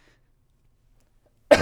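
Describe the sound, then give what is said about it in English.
A single sharp cough breaks a long stretch of near-silence right at the end, loud and abrupt, with a rough, throaty edge. “You can hear the cough coming in my yeah. voice.”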